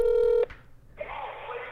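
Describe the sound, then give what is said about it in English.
A loud, steady electronic telephone tone from a call to a long distance number, placed on speaker for the Talking Hockey show, sounds for under half a second and cuts off abruptly, followed by a brief quiet gap and then a soft, hissing open phone line. “Is it ringing? It should be.”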